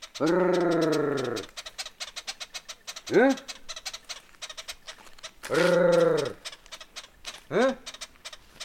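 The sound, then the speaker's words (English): A honeyguide's squeaky, rapid chattering runs throughout while a man of the Yao people, who live in Malawi and Mozambique, twice makes a long rolling trill followed by a short grunt-like call to signal to the bird, the pattern repeating, fairly loud. “So you can hear the bird making that squeaky chattering sound, and the people are going, brrr, huh?”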